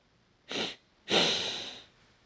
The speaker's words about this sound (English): We'll breathe in through the nose with a short breath, followed by a longer breath. So it sounds a bit like this.